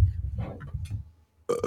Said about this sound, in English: Another burp for the road. Okay.